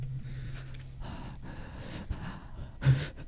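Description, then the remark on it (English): Loud, exaggerated breathing into a microphone, with heavy huffs and a sharp gasp-like burst near the end, no words spoken. “Do you like when we make weird noises? Mic arms make breathing like much.”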